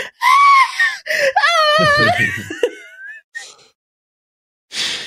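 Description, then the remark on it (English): A voice imitates the shrill, wavering scream of a sphinx cat, a loud drawn-out yowl with warbling pitch, followed by a short pause and a brief breathy burst at the end. “Like, She's just a sphinx cat above her head, and she just blinks a couple times and screams.”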